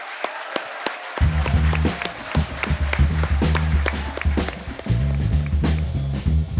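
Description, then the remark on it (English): An audience at the Battle of Ideas Festival 2021 applauds a panel with steady, dense clapping for several seconds; after about a second, a low rhythmic music bed joins underneath and continues with the clapping to the end. “And so please, can we hear it for our panel of gutsy fighters?”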